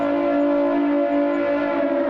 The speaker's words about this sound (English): Or, you know, I got the sirens going. It's incoming.